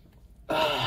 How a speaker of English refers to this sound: Across the board, let me take just another sniff of this coffee.